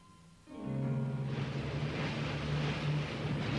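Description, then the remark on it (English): A small boat loaded with supplies starts its motor at midday and settles into a steady, loud droning hum. Moments later a broad rush of water and wind joins as the boat sets out to sea to meet a great ship. “Together, we loaded the supplies onto my boat, and midday, we set out to sea to meet the great ship.”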